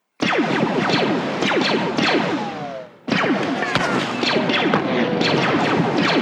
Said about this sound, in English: So up next, we got a pretty iconic one, blaster hits and ricochets.